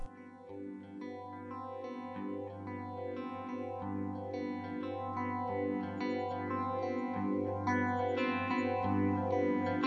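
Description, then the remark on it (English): A rock track plays with heavily effected electric guitar, layered chorus and distortion over a steady low bass drone, sustained at a full, even level with no voices. “All right, well, let's take a listen to it.”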